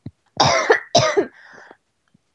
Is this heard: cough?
yes